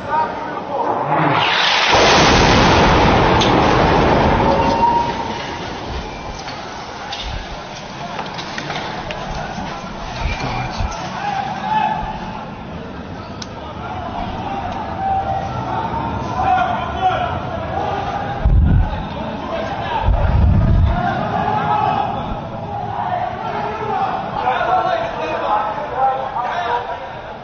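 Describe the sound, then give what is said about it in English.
Loud, roaring missiles strike a hospital in an Israeli missile attack, in a clip from Sky: one bursts near the start and fades over a few seconds, followed by frightened crowd voices and shouting, with another heavy impact thudding in later. “And we're going to play a clip that Sky half of those missiles coming in, and you can just hear the terror as these missiles rain in the hospital.”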